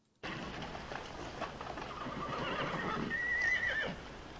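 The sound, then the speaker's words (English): Horses (ponies at a horse trader in Fort Smith, in the film True Grit) whinny over a busy background, with a shrill, wavering neigh standing out near the end, while scattered hooves clip-clop unevenly. “Maddie Ross has just taken the ponies to the horse trader in Fort Smith.”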